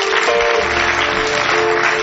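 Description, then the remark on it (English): An audience claps in a steady, dense wash of applause, loud and continuous for about two seconds, with a faint low hum beneath. “I thought you clap a little bit.”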